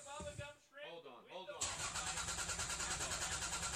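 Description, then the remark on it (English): A car engine struggles to start, with a wavering, groaning crank that sounds voiced, as if imitated, then a loud, rough, continuous engine roar bursts in and runs steadily. “Duncan, your car's not starting.”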